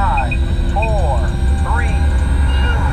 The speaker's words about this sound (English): We have main engine start.